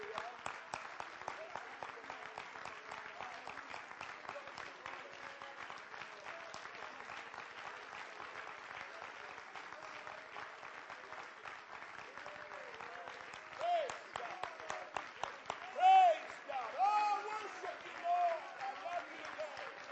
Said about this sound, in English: Now I want us to warm up a little bit. Praise God. I want you to clap your hands one more time to the Lord and give him a hand clap of praise.